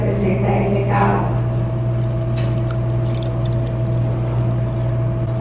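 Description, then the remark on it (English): Liquid is poured from the third of three jars, a short gurgling trickle near the start, over a steady electrical hum and background noise that continue after the pour fades. “And the third jar, as I pour this, it represents us.”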